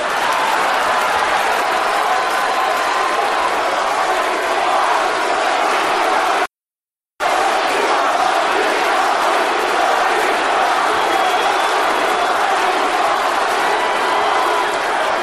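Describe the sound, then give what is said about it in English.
A large, loud crowd chants and yells at once, two groups competing, half chanting "Rocky" and the other half chanting "lady parts", blending into a dense roar. A brief silent break interrupts it partway through. “We got half the crowd chanting Rocky and the other half chanting lady parts.”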